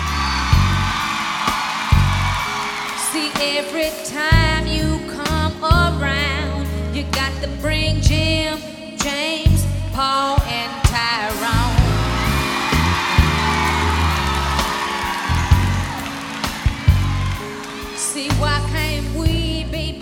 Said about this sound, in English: And all the women in the audience are screaming the entire time. Like, they're so delighted and they relate to this song so thoroughly, so immediately.